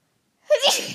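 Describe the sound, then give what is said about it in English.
A single sharp sneeze bursts out after a moment of silence, loud and breathy with a quick intake leading into it. “I'm gonna sneeze.”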